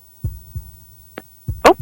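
Low, muffled thumps of a heartbeat, three beats spaced unevenly, followed by a short sharp click and a brief louder rustling burst near the end. No one speaks.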